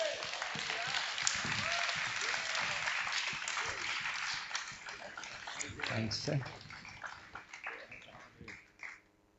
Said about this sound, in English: And I wonder if I could also invite all the guys, if you are here this morning, that went out there last year. So if you were in Manyatseng, it was last year, yes it was. Come on, give them a cheer.